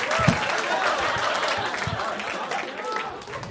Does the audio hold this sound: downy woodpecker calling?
no